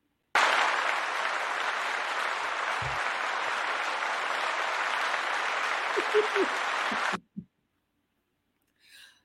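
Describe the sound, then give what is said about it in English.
A clapping sound effect: a burst of dense, steady applause from a crowd sustains for about seven seconds at an even loudness, then cuts off abruptly, followed by a brief faint rustle. “I laugh at this clapping sound effect every time.”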